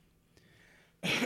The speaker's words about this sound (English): There it is. A cough. I had to cough.